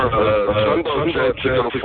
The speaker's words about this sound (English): So you're echoing.